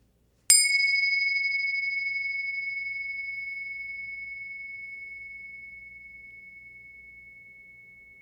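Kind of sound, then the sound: signal or alarm, meditation bell ringing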